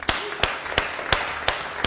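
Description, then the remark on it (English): Audience applause in a steady, unison rhythm for a woman who answered a question: about six sharp, crisp claps evenly spaced roughly a third of a second apart, with no voices over them. “Shall we give her a round of applause?”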